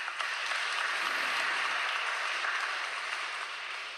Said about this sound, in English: Let's give Bishop Michael a round of applause, please.